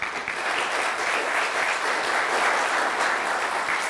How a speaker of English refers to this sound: Hey, let's give a round of applause to Alexandria's finest.